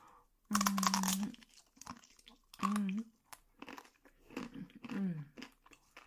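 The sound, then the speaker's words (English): Crunchy chewing of high-quality hay, with short bursts of crisp munching, mixed with several brief voiced, squeaky vocal sounds between bites. “Oh, I'm so glad I get to have first pick of the hay.”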